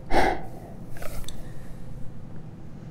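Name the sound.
person yawning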